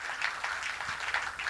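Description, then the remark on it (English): A crowd claps for the Lord, a dense, even patter of many hands with no voices, holding a fairly soft level throughout. “Put your hand together and clap your hands for the Lord.”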